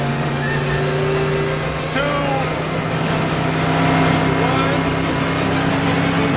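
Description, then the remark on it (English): A pickup truck engine roars steadily and loudly as the driver floors it, accelerating hard with a sustained, droning growl that climbs and holds for several seconds without letting up. “He floors it.”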